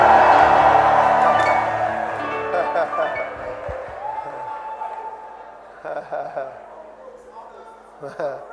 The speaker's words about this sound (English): All right. Give the Lord a shout and a clap of praise.